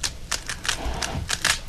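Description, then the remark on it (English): A Rubik's Cube being twisted quickly behind a person's back as they try to solve it, giving a run of sharp plastic clicks and clacks in an uneven, rapid rhythm, moderately loud with no talking over it. “with the Rubik's Cube that I don't think I've ever solved in my life. He has it behind his back. He's twisting”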